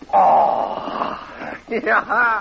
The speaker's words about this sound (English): Hey, here's a cougar howl tonight.